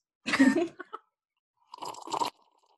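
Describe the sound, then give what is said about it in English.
Two wet slurps of a hot drink sucked through a cinnamon stick into a microphone, each a short noisy burst with a brief pause between, no talking. “It's a little scary to be slurping something hot through a cinnamon stick.”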